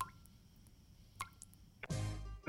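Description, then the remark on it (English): Water drips from a leaky roof, falling one at a time, a few clear plops spaced apart, followed by a brief, louder rush of splashing noise at the end. “Do the drips have you down?”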